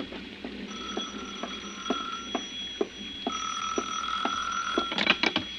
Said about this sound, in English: It was 5 minutes to 6 when the phone rang again. Will you get it, dear?